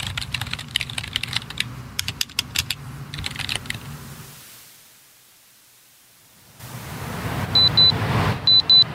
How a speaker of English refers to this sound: He connects the laptop cable into the end of the cord, and a soft glow shines from the screen. He begins typing into the night.